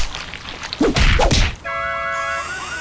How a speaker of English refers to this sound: In one ad, a man tries eating a chicken wing when it suddenly comes to life and begins slapping him in the face.